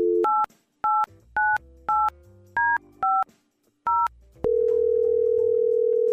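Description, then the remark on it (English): Seven crisp keypad beeps of a telephone being dialed from a radio station, spaced unevenly, followed by a loud, steady electronic ringing tone that holds to the end. No voices. “We're going to try and get him on the phone and set them up on a second date.”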